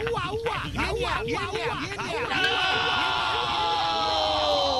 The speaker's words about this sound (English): Then the high-output in-dash speakers emit this nerve-wracking alert sound.